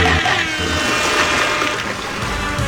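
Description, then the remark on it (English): A loud, steady rush of churning water that fills the whole moment, like something breaking up through the surface with a big sustained splash, as a figure with claws and a guitar pops up out of the water. No voices, just the water. “He's popping up out of the water with his claws and his guitar and everything.”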